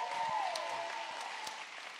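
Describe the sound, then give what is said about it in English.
An audience claps steadily, a dense wash of many hands applauding at an even, fairly loud level that fills the moment without a break. No one speaks. “Come on, can we just give a hand clap to him?”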